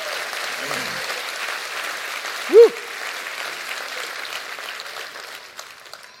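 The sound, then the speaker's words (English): An audience claps steadily for several seconds, a dense, even patter of many hands that holds its loudness throughout, with one brief high-pitched shout breaking through midway. “Clap your hands real good.”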